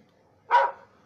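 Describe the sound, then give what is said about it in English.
A single short, loud bark, a person's voice imitating a dog, bursting out once midway through and trailing off quickly, with quiet before and after. “He a dog. My boy TJ Carey. He a dog for real.”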